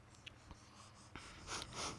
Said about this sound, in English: Oh my gosh, the sound! Stop it. You don't think people want to hear us sniffing into the microphone? No. I like it. I don't know how to describe it, but I like it.